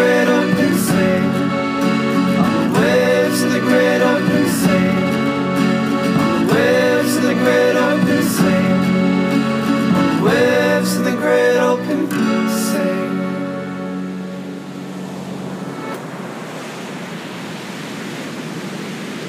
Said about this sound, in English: Music for our RPG A Day episodes is found on the Free Music Archive. It is … by … and is licensed under an Attribution Non-Commercial Share-Alike 3.0 United States license.